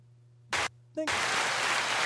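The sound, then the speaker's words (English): A crowd applause sound effect played from a button: a brief burst of noise, a short pause, then a crowd bursts into loud, steady applause that continues to the end, without fading in or out. No one speaks. “The crowd was in here and gone like that.”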